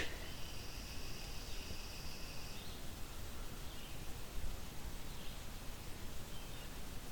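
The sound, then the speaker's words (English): A chipping sparrow's dry, even trill rings out faintly for a couple of seconds in a human-cleared area by a railway station, then stops, with steady rustling background noise throughout. “Maybe a chipping sparrow.”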